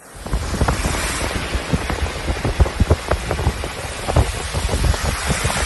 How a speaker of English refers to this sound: We've had an exceptional amount of rain.